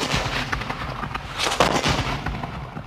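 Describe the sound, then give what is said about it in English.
Cannons firing from steamers on the Waikato River, shelling a pa, in a rapid, overlapping barrage: loud booming blasts over a constant rumbling roar, with no voices. “And then the cannons firing from the river, as well as the troops coming on the land, had never been encountered in the Waikato before.”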